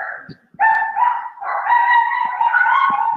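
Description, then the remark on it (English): A dog howls in long, wavering, sustained cries, broken by a brief pause and a short yelp near the start, fairly loud with no talking. “Is that your pup? Yeah, it's stupid animal.”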